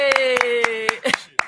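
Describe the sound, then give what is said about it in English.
About six sharp hand claps at a steady, unhurried pace, done as fake applause in a studio to welcome a guest, as if applauding on cue, while a voice holds a long drawn-out tone underneath. “Hey, we'll just do fake applause.”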